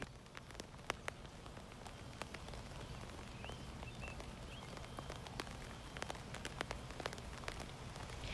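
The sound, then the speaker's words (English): Steady rain patters down continuously, with scattered sharper drops ticking on a surface over a dense low hiss; a few faint bird chirps come through in the background. “Rain is romantic. It's refreshing.”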